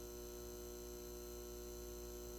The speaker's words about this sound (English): The buzz of the arc sodium streetlights are replaced by the cold buzz of fluorescent overhead lights.